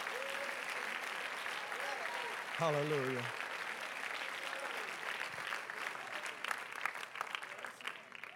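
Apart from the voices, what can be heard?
audience clapping hands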